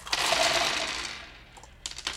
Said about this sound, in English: I'm sure the mic picked that up. So there's all my dice.